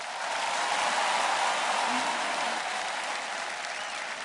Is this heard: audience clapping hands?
yes